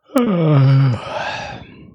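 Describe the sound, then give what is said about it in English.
A single loud yawn: a drawn-out voiced moan that slides downward in pitch, then trails off into a softer, breathy exhale. No one speaks. “And when you yawned at the end, as if even you thought it was dull.”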